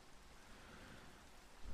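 Steady rain falls in a continuous, even hiss spread across the whole range, with no individual drops standing out and no voices; a slight low swell comes in at the very end.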